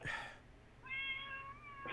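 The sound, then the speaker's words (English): A cat wanting to come in lets out one long, drawn-out meow with a steady, slightly whiny tone, fairly clear, following a brief noisy rustle at the start; no one talks. “Meow. Oh, somebody's so upset. Chopper wanted to come in.”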